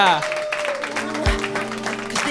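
Steady audience applause for a performer, a dense crackle of many hands clapping at once, mixed with sustained musical tones and a brief low thump midway.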